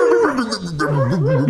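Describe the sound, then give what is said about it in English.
A person imitates sled dogs howling as they are lined up before taking off: one sustained, wavering vocal howl whose pitch slides up and down for about a second and a half, fairly loud and unbroken. “And they're like, oh yeah, we'll line it up, I'll show you, and then they rev the dog engines. They just howl.”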